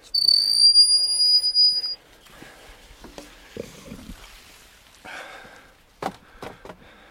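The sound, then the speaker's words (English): A gate leading into a field, opened during a walk, squeals open with a loud, sustained high-pitched squeak lasting about two seconds, followed by softer creaks, rattles and a few sharp metallic clunks as it swings and settles. “I'm just going to open the gate here. Apologies, it's going to squeak, I think.”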